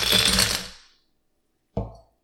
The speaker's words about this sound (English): Let's do it. I've got my wine glass all ready. I'm adding ice.